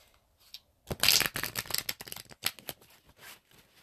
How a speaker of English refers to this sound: All right. We'll do one more shuffle and I'm going to pull three cards.